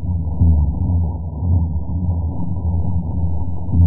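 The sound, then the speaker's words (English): A dense underwater chorus of low booming pulses from spawning fish, one after another, forming a continuous throbbing drone like boat propellers, loud and steady with no voices. “Yeah, it almost sounds like propellers from a boat. And it's just this, you know, one boom after another.”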